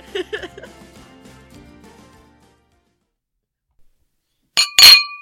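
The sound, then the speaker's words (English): Two glasses clink together in a quick, bright double chime with a short ringing tail, loud, following a stretch of near silence after a faint fading tone. “You didn't say cheers.”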